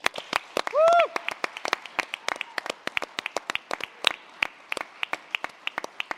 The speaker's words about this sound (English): I'd love to prove it's live, actually, because this is something that we had a problem with last year, by giving a raucous round of applause to the IOH team for the event that they're putting on today.